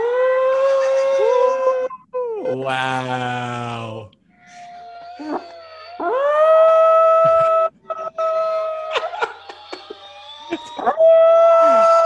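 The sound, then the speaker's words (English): A small poodle howls in long, wavering, high-pitched wails with rising and falling tones, broken by short pauses, while a person murmurs a brief exclamation midway. “So, I mean, this guy's a little poodle, right? But he will howl if he hears howling.”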